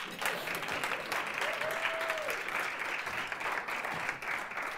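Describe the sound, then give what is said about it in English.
A crowd breaks into sustained applause for a speaker who has just said he graduated with a Juris Doctorate degree, a dense, steady patter of many hands clapping at once that holds evenly throughout, with a brief faint whistle rising above it. “You can clap now.”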